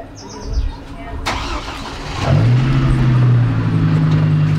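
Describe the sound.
A car engine cranks and catches partway through, settling into a loud, steady low idle rumble, with faint background voices and a brief chirp early on, as a small caravan of cars carrying about 20 people sets off from rural Redding, California, on a mild June day in 2018.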